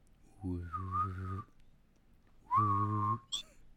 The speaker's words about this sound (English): Don't you whistle and double? What's that? Can't you whistle and double? I can hum and whistle.